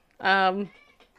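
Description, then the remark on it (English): A cat lets out one loud, drawn-out meow lasting about half a second, with faint voices murmuring in the background afterward. “Can you guys hear the cat? I mean, seriously, he's making lots of noise.”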